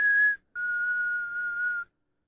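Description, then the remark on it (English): A person whistles two clear notes, a short one followed by a longer, sustained note that sinks slightly in pitch, like a slow taunting tune. The whistling is steady, with no talking. “The only thing he's missing is like a Negan whistle. Like as he's chasing her, he's like, yeah.”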